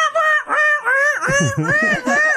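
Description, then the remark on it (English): A voice imitates guinea hens with a rapid run of loud, harsh, nasal squawks, about five rising-and-falling cries in quick succession, continuous with no other talk. “You know what's funny is like that's an accurate representation, folks, of the fucking guinea hens. Just not even close to loud enough.”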